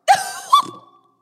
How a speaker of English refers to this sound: I can't get over that fact that I just was talking and a burp came out.